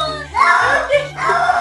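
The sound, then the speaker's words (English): A cat that does not want to take a bath yowls in two loud, drawn-out wails, each bending in pitch so it sounds like a person screaming "no." The wails are shrill and strained, with no other voices. “He's screaming the word no because he doesn't want to take a bath.”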